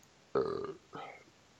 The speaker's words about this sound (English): You don't stop burping in this goddamn ear, nigga. That's like, oh. I'm drinking, my bad.